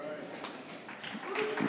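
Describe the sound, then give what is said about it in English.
Three scattered hand claps from staff members, sharp and fairly quiet, over a steady background murmur of voices. “I got three claps right there, and fortunately, they were all from staff members, so that's good.”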